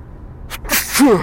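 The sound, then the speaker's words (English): A single loud human sneeze: a sharp breathy intake, then a forceful, hissing burst that trails off into a brief voiced groan. “That was a big sneeze.”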